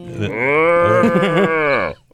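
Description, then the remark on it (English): A single long, loud cow moo, rising and wavering in pitch with a slight tremble in the middle, held for nearly two seconds before cutting off, with no talking. “That's when the cows start to panic.”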